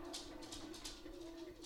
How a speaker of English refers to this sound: Dog sitting and podcasting doesn't work. People can hear tipper tapper. I'm throwing a ball for a spaniel.